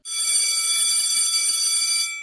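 A school bell sound effect rings continuously for about two seconds, a loud, bright, steady metallic jangle with shimmering high tones and no voices over it.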